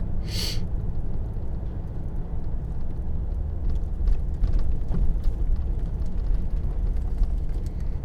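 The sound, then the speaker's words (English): A steady, loud low rumble of a car moving through traffic, heard from inside, with a short hiss near the start and a few faint clicks and rattles partway through. “Sorry, I'm kind of trying to get through just a little bit of traffic here.”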